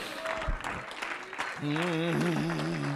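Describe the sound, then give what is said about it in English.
An audience at a revival church service claps their hands together in a dense, steady wash of applause, and about halfway through a loud, drawn-out voice rises over the clapping. “Clap your hands.”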